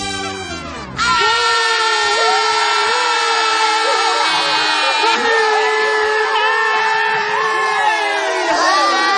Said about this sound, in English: And just like God said, when they finished marching, the priests blew one long blast, and then all the people yelled.